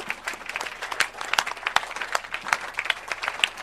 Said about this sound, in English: Shout aloud the amen in the church. Amen. Please, you can clap better. You can clap better.